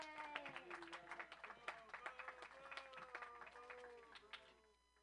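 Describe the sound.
An audience at a comedy show claps steadily for the next comedian being introduced, a dense patter of many hands, with scattered whoops and cheering voices mixed in, the applause tapering off slightly toward the end.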